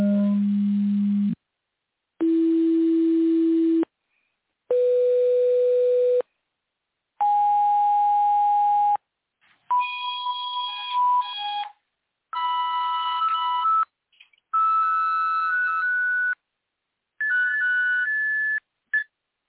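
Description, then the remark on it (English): A synthetic chirp signal: eight loud electronic tone bursts, each over a second long with short gaps, stepping steadily upward in pitch from a low hum to a high whine. The later bursts carry several layered tones. “So this is the original chirp.”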